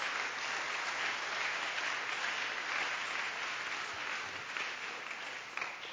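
An audience claps for the Lord together in a steady, dense wash of applause lasting the whole stretch, bright and crackling, holding an even loudness before easing slightly near the end.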